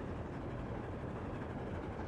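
Train wheels rolling along the tracks make a steady, continuous, moderately loud rumble, with no voices present and no distinct separate clacks standing out.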